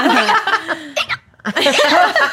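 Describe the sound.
A voice imitates loud hiccups with sharp vocal bursts, mixed with laughter-like sounds and broken by a brief pause near the middle.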